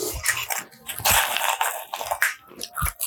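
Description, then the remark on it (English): Close, loud crunching of dry cereal being chewed right against the microphone, a steady run of crisp, crackly bites and munches with no talking. “If you want to hear some real crunch, I got you.”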